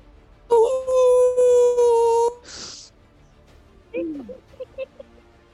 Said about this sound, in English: He howls.